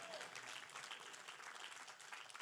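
A church audience claps steadily throughout a sermon, a dense, continuous patter of many hands with a bright, crackling texture and no speech over it.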